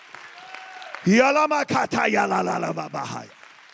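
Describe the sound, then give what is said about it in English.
A loud burst of voices shouting praise to God rises suddenly and holds for about two seconds, with some clapping mixed in, before fading out. A quieter stretch with a faint sustained tone comes before it. “Somebody clap your hands and give God a shout of praise tonight.”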